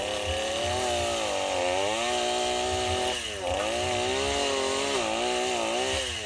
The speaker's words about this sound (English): Move that saw back and forth. It cuts better when you're, you know, doing the cross-cut chainsaw.